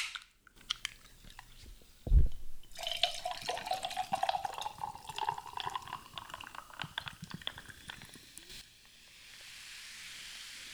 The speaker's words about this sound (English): And finally, I'm gonna top it all off with some ice cold sparkling water.